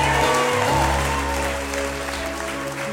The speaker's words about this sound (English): Come on, give God a hand clap for Jesus.